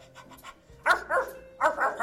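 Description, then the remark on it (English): Femur, a small Kurt Russell Terrier, barks in a living room at feeding time in a quick run of sharp, high yaps, coming in short clustered bursts after a few faint yips at the start. “The first thing we'll do today is feed my Kurt Russell Terrier, Femur.”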